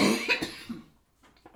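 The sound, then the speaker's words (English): A person coughs to clear something stuck in the throat: a harsh burst followed by a couple of shorter, rougher hacks, then quieter throaty noises trailing off. “I'm sorry, I have something in my throat.”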